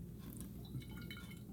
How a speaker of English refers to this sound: And I'm going to decant our kombucha into the bottle. So it's pouring out right now. That's what makes this pour spout so convenient.